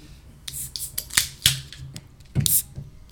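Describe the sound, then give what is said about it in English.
A craft beer being cracked open: a run of sharp metallic clicks and snaps, then short bursts of bright fizzing hiss, with no voices. “All right, we're cracking this open.”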